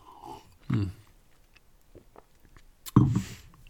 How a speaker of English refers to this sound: I got to take a sip. Wait a second.